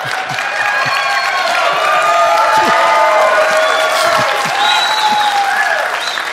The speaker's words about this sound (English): so y'all clap a lot, okay?